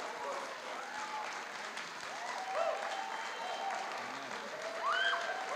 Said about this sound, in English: And I want those who are born again, who've experienced Jesus as a gift, to give Him a shout of praise and constant applause for 10 seconds. Go ahead. Thank Him.